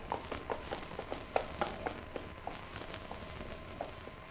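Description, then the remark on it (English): Quiet, steady clip-clop of an approaching horse's hooves carrying a rider, a string of light knocks in an even rhythm, against a faint background hiss with no one talking. “Look. Horse come there.”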